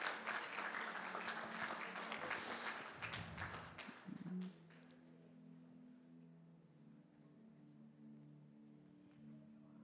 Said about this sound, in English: Our beautiful kids are going to come up, up on the stage. We're just to welcome them to come up. Yes, you can clap them up.